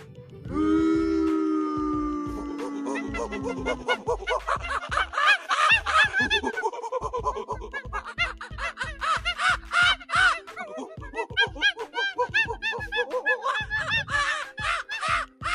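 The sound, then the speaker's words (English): Chimpanzees call loudly: a drawn-out rising hoot gives way to a frenzied chorus of rapid, overlapping hoots and shrieks that pulse rhythmically and stay intense throughout. “See, if the chimpanzees again have something to say in regards to giving out the monkey of the week.”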